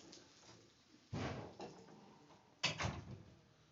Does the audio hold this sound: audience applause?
no